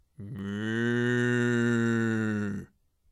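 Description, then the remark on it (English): A person imitates an ox with one long, steady moo, deep and droning, held for about two and a half seconds before cutting off, with no other talk. “There was a dog, and there was a horse, and there was an ox.”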